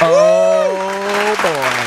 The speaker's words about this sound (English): A lot of clapping this episode. A lot of clapping.